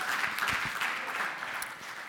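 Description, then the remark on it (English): An audience breaks into a round of applause, a dense, steady wash of many hands clapping that holds for a couple of seconds and tapers slightly at the end. “Yeah, you can give that a round of applause.”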